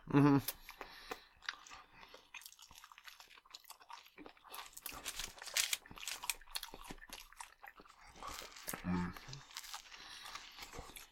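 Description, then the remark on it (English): Crunchy chewing of a sandwich runs throughout, with irregular bites and wet mouth sounds, plus a couple of brief murmured voice sounds near the start and toward the end. “It's one of those things where it's just like, you don't realize how hungry you are until you start eating.”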